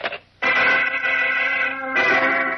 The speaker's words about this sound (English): Forced to leave the phone booth, Chuck Riggs hangs up at the very moment that Clark Kent, returning to his apartment, hears the phone ringing, opens the door quickly, and rushes across the room.